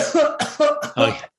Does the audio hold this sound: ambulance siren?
no